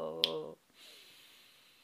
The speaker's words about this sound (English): Ready? Let us take the long, deep breath. Go.